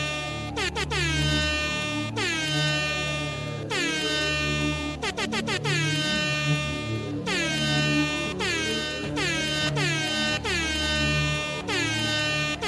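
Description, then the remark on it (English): Loud air horn blasts repeat in a rapid, rhythmic pattern, some in quick stuttering bursts, each one sliding down in pitch as it fades. They play continuously with no talking. “there's going to be something going on right now, and that something is important, and it's an air horn.”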